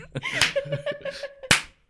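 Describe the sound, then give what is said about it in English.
A sharp hand clap used as a tail slate at the end of a recording lands near the end, loud and crisp, after an earlier softer clap, with brief chuckling vocal sounds in between. “It's called tail slating.”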